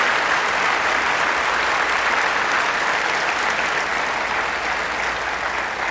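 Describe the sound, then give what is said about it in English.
A church audience at Broadmoor Baptist Church breaks into sustained applause for graduating seniors on Senior Recognition Sunday, many hands clapping in a dense, steady wash of sound that holds evenly loud for the full six seconds, with no voices standing out. “Church family, let's give them a hand clap of praise.”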